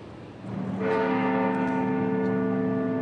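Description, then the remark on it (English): A clock bell strikes at 11 o'clock on Remembrance Day during a memorial service. It strikes once, its deep, rich tone swelling in and ringing on with a long, steady hum of overtones over faint background noise. “When the clock strikes 11, the city stands still, marking the 11th hour of this Remembrance Day.”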